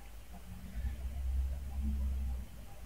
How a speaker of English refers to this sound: But you can hear the truck. Crazy, isn't it? There you go. You can hear it pulling away.